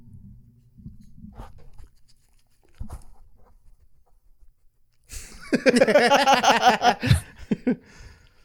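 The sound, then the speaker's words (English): A dog sniffs, pants and licks: faint low snuffling at first, then a loud, rapid flurry of wet, irregular breathing and lapping sounds for a couple of seconds before fading. “Man, you hear that sniffing, that panting. hold on. That licking.”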